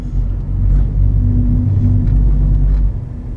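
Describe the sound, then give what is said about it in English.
A car drives off the road over a rough, unpaved track, still 1.5 kilometres from Elvedon Castle. Its loud, steady low rumble is broken by scattered bumps and rattles. No one speaks. “I don't think this is a road. It's not when you're driving off it like that.”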